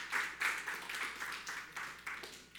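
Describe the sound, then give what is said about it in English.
Scattered applause from an audience, a steady patter of many hands clapping in uneven bursts, fairly soft and continuing without any voices over it. “Give God a round of applause if you're hearing that word.”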